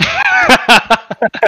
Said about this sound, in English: I'm just so fuming. Mad. Yeah. He's slamming stuff on the desk.